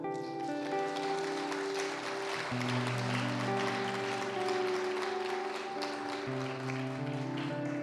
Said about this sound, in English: Why don't we applaud every dad that brought their families to church today?